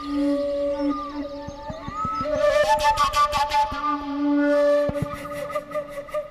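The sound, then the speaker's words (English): A Ukrainian tylinka, a simple traditional flute with a single sound hole, plays breathy, sustained, wavering tones with sliding pitch and bursts of rapid fluttering notes that imitate bird calls, carrying on over a steady, droning musical backdrop without any voices. “It is a very simple flute with a single sound hole that a musician can use to imitate nature sounds and bird calls.”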